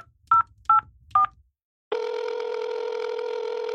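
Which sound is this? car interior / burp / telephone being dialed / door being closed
telephone being dialed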